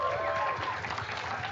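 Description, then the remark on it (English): A crowd claps steadily and densely for a moment, the applause loud and continuous throughout, with what may be a few faint voices mixed into the noise. “Everyone give a round of applause”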